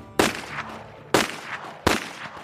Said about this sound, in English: Around 4 p.m., gunfire erupted on the outskirts of LA's Chinatown on what was then called Calle de los Negros, near current Alvarez Street.